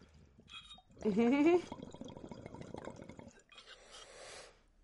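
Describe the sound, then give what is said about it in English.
Liquid is poured into a container, a steady splashing stream whose pitch rises as it fills, then settles into softer trickling and gurgling before fading out. “I'm going to put a little bit more in the top so that last perk is, like, roll covered. It might splash back a little bit, but I'm willing to take that risk.”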